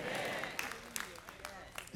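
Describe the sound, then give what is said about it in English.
An audience claps hands in a steady, dense wash of applause, with a few sharper claps standing out, while voices carry on over it. “Clap your hand.”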